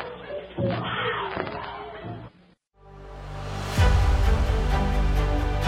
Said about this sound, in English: Above the jungle chorus of the night and beneath the crystal stars comes the distant thudding of drums.